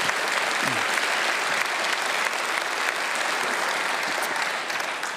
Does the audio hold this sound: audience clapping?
yes